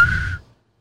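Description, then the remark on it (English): A single short, sharp whistle blast, high and piercing with a breathy edge and some low rumble beneath, cutting off abruptly after a split second with no talking. “Sharp whistle. No, I'm talking about the literal whistle.”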